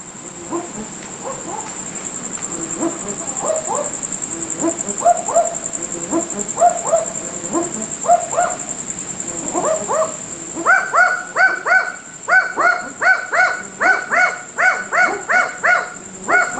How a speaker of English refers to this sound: From a backyard in Darwin, right into your ears, it's a set of barking owls.